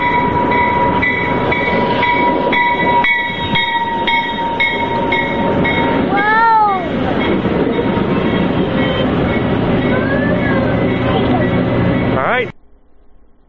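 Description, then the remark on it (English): A loud train rumbles in and passes people waiting for it, its roar steady with rhythmic rail clatter, a tonal horn-like whine sweeping around midway, before the sound cuts off abruptly. “Are we going to ride the train? Yeah! Look at how it goes to us! Oh my goodness! Here it comes!”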